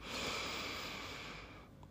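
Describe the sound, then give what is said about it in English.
A long, steady in-breath drawn slowly through the nose during a meditation exercise, airy, lasting most of the moment before tapering off into quiet, with no talking. “And then the remix that I also like is breathing in, I calm myself.”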